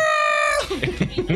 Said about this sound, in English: Why is my cat being the loudest cat in the world right now? Can you stop? Fuck you. Can you not do that?